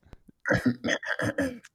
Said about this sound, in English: Oh, I was like waiting. This is just a cough, because I can see on the thing where the blips are.